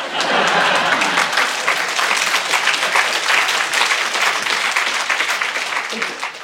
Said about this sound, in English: I think this is applause from above.